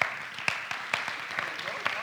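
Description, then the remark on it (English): Thin, scattered applause from a small audience for the winners of a question round: a handful of sharp, irregular claps at moderate loudness over a low background hum, with no one speaking. “You guys, look at your winners and applaud them for being quick.”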